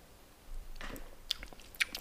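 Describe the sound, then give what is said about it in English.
Someone sips a pale ale beer: a soft slurp followed by a couple of sharp, wet mouth clicks and swallows, with no talking. “Let's have a sip.”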